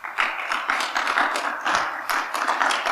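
A church audience claps for the Lord in a steady, dense wash of applause that holds for about three seconds, loud and crackling with many overlapping hand claps and no voices.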